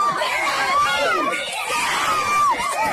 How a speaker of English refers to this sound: That's all you need. It's 50 seconds of this. This is in the stands. Why is everybody screaming?